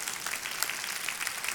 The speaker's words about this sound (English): I mean, come on, I should get an applause for that. Six.